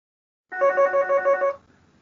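An electronic telephone of a phone system rings in a quick pulsing burst for about a second, fairly loud, then cuts off into quiet background noise.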